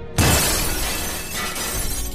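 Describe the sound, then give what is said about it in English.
A large pane of window glass shatters with a sudden loud crash as a thrown bottle breaks through it, followed by a dense spray of breaking and falling shards that keeps clattering for about two seconds. “Suddenly, he threw the bottle through the window, breaking a large pane of glass.”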